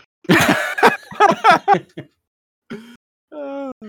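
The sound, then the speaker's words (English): A person imitates a raspy old smoker's cough, loud: a rapid run of hoarse, hacking coughs, then a pause and two short, throaty, wheezing groans. “Thing of, or maybe Family Guy, some sort of like old like smoker cough like lady of the night.”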